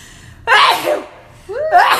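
Two sharp sneezes in quick succession, loud and close to the microphone, each a sudden breathy burst with a brief pause between them and no talking.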